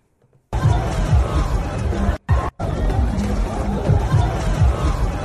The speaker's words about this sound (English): Look at those people right there, bro. Getting trampled, coming through the fence.